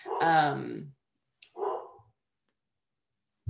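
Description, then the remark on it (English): A male dog barks twice: a long, drawn-out first bark, then a shorter, softer one after a brief pause, followed by quiet. “Is that a female dog or a male dog?”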